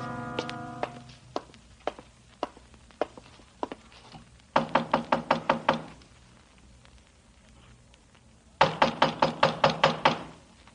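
Police knock loudly and insistently on a door in two rapid bursts of about eight raps each, separated by a pause, with a few quieter scattered knocks before them.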